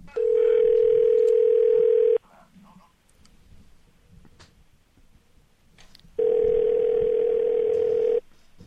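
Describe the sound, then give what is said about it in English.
Phone ringback tone on an outgoing call: two steady, fairly loud two-second rings separated by a roughly four-second pause with faint background noise. “I make the phone call, and here it is.”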